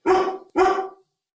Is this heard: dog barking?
yes